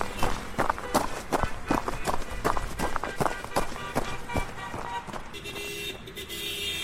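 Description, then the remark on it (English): Quick, evenly spaced jogging footsteps slap the pavement for several seconds as a person jogs through traffic toward a gas station, with traffic rumbling in the background and a sustained horn-like tone sounding as the steps fade. “I jogged through the traffic and over to the gas station.”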